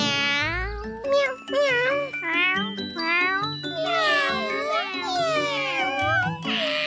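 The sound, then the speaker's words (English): A child's high-pitched voice imitates a kitten, meowing over and over in a rapid, whiny string of rising and falling mews, fairly loud. “You just have to go like this when you want something. Meow, meow.”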